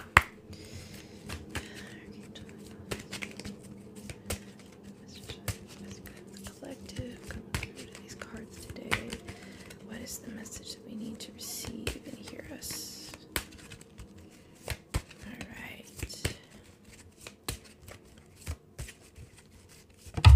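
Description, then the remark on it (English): Crisp shuffling of a deck of cards before pulling a card: a steady run of sharp snaps and soft riffling flutters that comes and goes in bursts for about twenty seconds, quiet overall with a faint murmur underneath. “So I'm gonna go ahead and just kind of shuffle and pull.”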